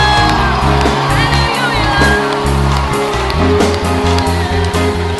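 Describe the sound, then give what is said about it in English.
An audience gives the Lord a mighty hand clap of praise, clapping and cheering loudly, with whoops and shouts rising from the crowd over a steady, booming keyboard bass line, the noise sustained throughout without pause. “Give the Lord a mighty hand clap of praise.”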